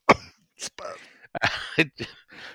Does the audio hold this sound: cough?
yes